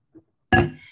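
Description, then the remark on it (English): A faint soft sound, then a sharp ceramic clink of a coffee mug with a bright ringing tone that slowly fades, as someone takes a sip. No talking. “And then a big one, ladies, drum roll please, sip of my coffee.”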